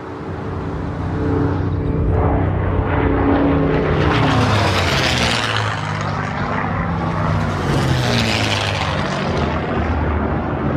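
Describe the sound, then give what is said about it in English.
Loud propeller planes roar overhead at an air show, their engine drone rising and falling in pitch as they pass, a continuous wash of noise with no voices. “We can only play audio of one because the reaction from most of those that are just – they're just using their phone, guys, and just pointing up to the sky at this air show.”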